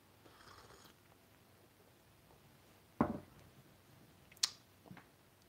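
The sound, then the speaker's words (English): A cat purrs softly, a low steady rumble, broken by a couple of sharp bumps or rustles. No one speaks. “Hey, there's a show going on right now. You're distracting me. Anybody want to buy a cat?”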